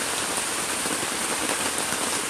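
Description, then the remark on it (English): Heavy rain pours steadily and loudly, a dense continuous hiss of drops drumming on a surface with no pauses and no voices. “And you can hear the rain right now.”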